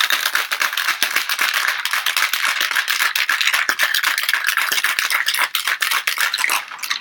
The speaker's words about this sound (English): And we'll go ahead and shake it for 30 seconds, just until the whole shaker is frosty.